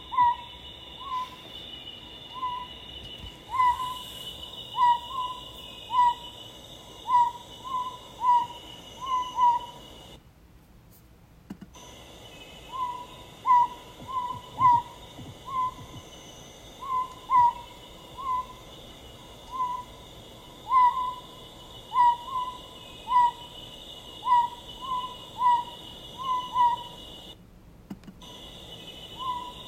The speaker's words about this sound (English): And here, the very first and only recording of the Principe Scops Owl.